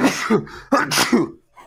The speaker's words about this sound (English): Oh my god! Wow, that was a vicious sneeze. I was trying to hold it back.